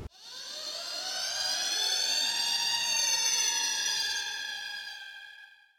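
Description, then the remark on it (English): A loud alarm siren wails steadily, its tone gliding slowly with rich harmonics, swelling in and holding for several seconds before fading out, with no voices present. “I think it's time for us to sound the alarm.”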